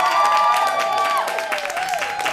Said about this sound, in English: Live this weekend where the action is on Triple J on Swingin' Radio. An applause for Richard Kingsmill!